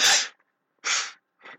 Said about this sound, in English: I'm going to just take a break and blow my nose. Hold on a minute. I apologize for this.